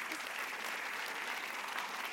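A steady wash of audience applause fills the whole stretch, many hands clapping together at an even, fairly loud level with no voices rising above it.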